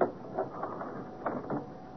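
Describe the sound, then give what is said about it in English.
A door swings shut and its latch engages with a few sharp mechanical clicks and rattles spread over two seconds, moderately loud, with no voices. “Wait till I close the door.”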